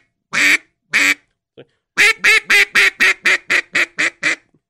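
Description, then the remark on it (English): A duck call blown: two separate loud quacks, a pause, then a rapid run of about eleven quacks in a steady cadence falling from high to low, with no talking. “So it's the same in the duck call. You know, you can start high, then go low.”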